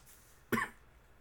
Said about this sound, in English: Oh no, I coughed. I gotta edit that out. People might think I have a COVID.